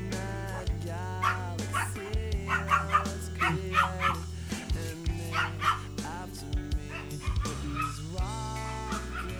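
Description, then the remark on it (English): Two friendly dogs bark and yip repeatedly in quick, uneven bursts, with a steady low hum running underneath throughout. “We got two very friendly dogs here.”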